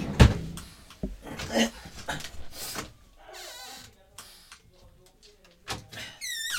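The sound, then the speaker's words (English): A door thumps and rattles open near the start as it is opened to let a dog in, followed by shuffling movement and faint high squeaky sounds, with soft indistinct voice-like sounds in the background. “He's starting to annoy me too because he keeps scratching at my door. Hold on, let me just get him in.”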